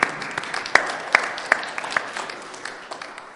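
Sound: audience applause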